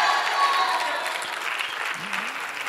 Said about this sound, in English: Now, come on, give Jesus a big hand clap. Oh, come on. I said give Jesus a big hand clap.